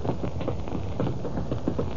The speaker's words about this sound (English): A late afternoon thunderstorm breaks over the city.